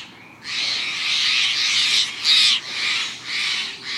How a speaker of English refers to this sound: The alarm call of the jay helps protect not only the jay and its kin